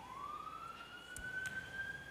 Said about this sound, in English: Lord, we just be with that ambulance or police car, wherever they're going right now, in Jesus' name. We pray for protection, provision, healing over the people they might be visiting.